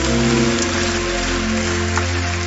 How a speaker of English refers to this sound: I enjoyed all the ministrations, powerful ministrations by the choirs. I want us to clap for the choirs once again.